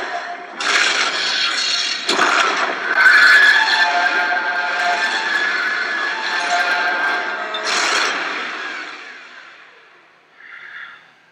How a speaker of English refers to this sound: I love the pacing of that too, where it's, you know, he yells shut up, and with that, you know, the sky opens, or at least the sky of the hatch, and that, you know, now the blast doors are coming down from the ceiling.